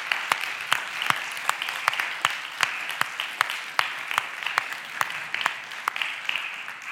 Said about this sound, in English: We have just finished the, yeah, go ahead and give them a big thank you. Round of applause.